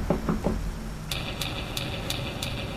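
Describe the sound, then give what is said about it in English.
Three quick knocks on a door, fairly loud, followed by a steady series of short, bright electronic chirps repeating at an even pace over low background rumble. “Hold, don't knock on that door, dude.”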